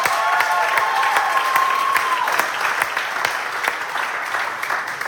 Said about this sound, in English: And then while your hands are in this position, every church, every location, can we give a huge round of applause to all of our next-gen students who led service last week?